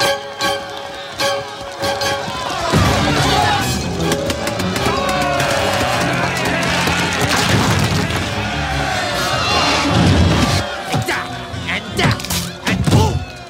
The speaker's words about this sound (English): Well, I say there are some things we don't want to know. Important things. Yes! Enough talk. It's smashing time.